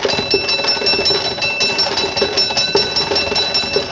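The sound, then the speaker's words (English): A horse-drawn fire engine of the Norwich Union Boys Firehouse in Manchester, England, pulled by a team of horses, rushes to a fire in 1826, its bell ringing continuously over a rhythmic clatter of hooves and wheels, steady and fairly loud throughout with no voices. “A team of horses pulling the fire engine of the Norwich Union Boys Firehouse.”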